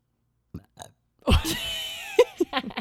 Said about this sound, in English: Okay, hold on. I have to burp.